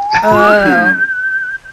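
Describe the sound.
A whistled imitation of a theremin: one eerie tone glides upward, then holds a long, steady high note that fades out. A fuller, voice-like hum blends in during the rising start.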